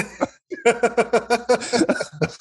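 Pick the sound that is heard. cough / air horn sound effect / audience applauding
cough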